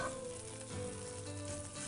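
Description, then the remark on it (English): Steady, dense sizzling of duck breast frying skin-side down in a pan, a continuous crackling hiss with fine pops and no talking. “Perfect, so that's cooking away nicely there. We're going to do 90% of our cooking of our duck breast on the skin.”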